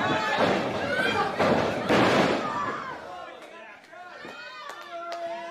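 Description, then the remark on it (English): Heavy wrestling slams thud onto the mat amid a loud, roaring crowd, followed by a few sharper impacts as the noise settles and voices talk over the action. “Slams.”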